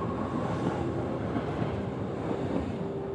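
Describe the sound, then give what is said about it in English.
An Amtrak passenger train from Baltimore to Charlotte, North Carolina rumbles steadily along the rails, a dense, continuous roar with faint rhythmic clatter and a thin tonal whine, holding even loudness throughout with no voices. “took a 9:15 a.m. Amtrak train, and arrived in Charlotte, North Carolina by 8:45 p.m.”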